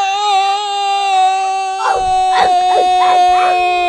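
A dog holds a long, steady howl throughout, joined about halfway by a run of four or five sharp barks in quick succession. Both are loud, and no one speaks.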